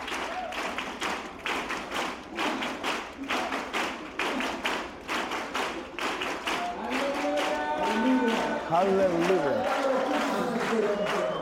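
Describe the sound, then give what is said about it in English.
An audience at a gathering in Costa Rica claps in unison to cheer on pastors from all over Central America, in a repeating rhythm of three claps, broad sharp bursts, then the claps blur into a sustained cheer with voices rising over it. “Three claps, three claps, three claps, three claps.”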